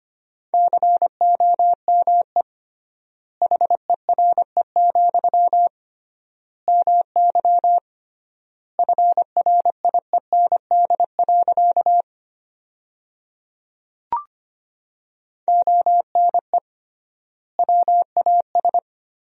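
Rapid Morse code beeps at 25 words per minute with 3x word spacing, sending sentences from the top 300 words: a steady mid-pitched tone keyed into quick dots and dashes, grouped in bursts with longer pauses between words, plus one brief click.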